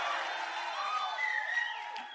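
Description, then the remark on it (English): An audience cheers and shouts together on request, a dense, sustained roar of many voices with scattered whoops rising above it, filling the whole moment at steady loudness. “I want you to give a shout like that. Cheering, shouting.”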